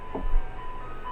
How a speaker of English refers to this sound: And as you're all talking, you all of a sudden hear this music that makes you want to run outside and have a frozen milk treat. Because that's the ice cream truck. Don't they know there's a pandemic? Oh, he comes by every day at 8.